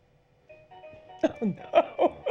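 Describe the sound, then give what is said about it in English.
A mobile phone ringtone plays a steady electronic melody of sustained tones, and a voice soon begins speaking over it, partly covering the tune. “Oh, no. It's my phone, too.”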